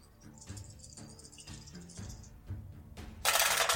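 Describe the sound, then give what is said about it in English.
Dice clack against a hard surface in a series of sharp knocks, then a loud, dense clatter at the end as many dice tumble together. Fairly loud, with no talking. “That's a lot of dice.”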